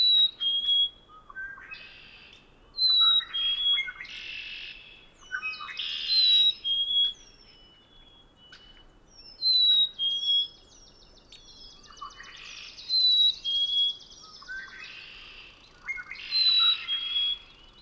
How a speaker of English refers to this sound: As I approach a small pond surrounded by willows, a black-capped chickadee lands right in front of me and begins singing, and red-winged blackbirds sound off in the background from cattails at the edge of the pond.